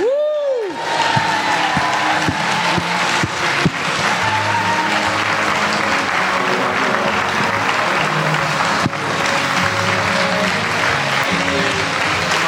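A large audience breaks into loud, sustained applause, a dense wash of clapping that holds steady for about twelve seconds without easing off.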